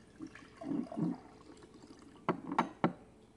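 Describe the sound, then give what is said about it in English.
Liquid glugs briefly as it's poured into a measuring cup, then three sharp clinks or splashes ring out. No one speaks. “Pour this.”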